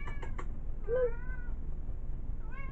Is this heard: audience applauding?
no